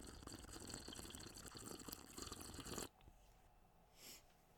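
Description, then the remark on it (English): Tea pours steadily into a cup, a dense splashing trickle lasting about three seconds before cutting off, followed by quiet and a brief soft sound. “I almost poured tea on your pristine floors.”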